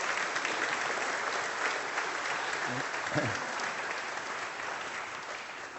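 An audience applauds steadily for people called up to the pulpit, dense clapping filling the whole clip at an even level with no pauses, a couple of faint voices briefly showing through midway.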